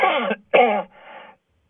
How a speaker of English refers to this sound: Excuse me. I had a cough. I'm getting dry from talking so much here.